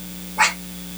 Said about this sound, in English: Yeah, my damn dog is barking. What the hell is she barking for? Hey! Shut up!